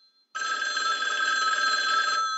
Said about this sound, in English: Are you going to answer that? I don't want to tell you what to do, but you're listening to this on your phone, and your phone is ringing.